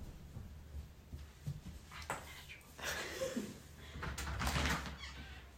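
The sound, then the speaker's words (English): A front door is pulled open for a pizza delivery with a few scraping, rattling bursts of movement over a low steady background hum, not very loud. “I guess maybe, our pizza's here. You might should answer the door.”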